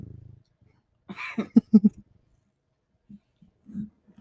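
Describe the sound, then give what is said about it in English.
A cat's low, rumbling purr pulses briefly at the start, then a few louder rough bursts follow before the soft purring returns in short, quiet stretches. No one speaks. “Enjoy the cat purse to make it better.”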